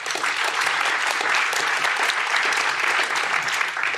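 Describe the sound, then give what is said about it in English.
An audience claps steadily for several seconds to welcome a discussion panel, a dense, sustained wash of many hands at an even loudness with no voices rising above it. “But yes, ladies and gentlemen, our panel, round of applause, please.”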